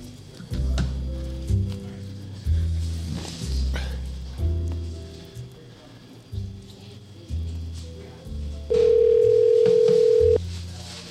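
A phone call being placed to a Boeing facility in Ridley Park: a run of short electronic tones, then one long, steady ringback tone near the end, fairly loud with no voices.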